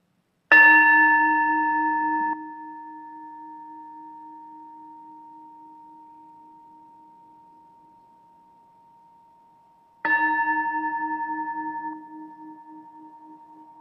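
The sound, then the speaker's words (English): A bell is struck twice to open a worship service, about ten seconds apart, each strike ringing out clearly and fading slowly into a long, steady hum. No voices are heard, only the lingering tones. “And now I invite you to close your eyes, take a deep breath, and hear the sound of the bell as it brings us together in worship.”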